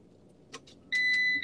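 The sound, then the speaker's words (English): A van's seatbelt warning beeps loudly and steadily over a low engine hum as the driver takes the seatbelt off while the van is in drive. A couple of soft clicks come just before it starts. “You hear that? You hear that sound? That beeping? How do I get that beeping to stop?”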